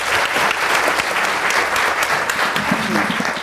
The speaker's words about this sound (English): Give Katrina a big round of applause.